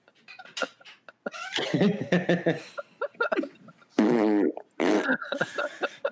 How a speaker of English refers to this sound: Stop farting.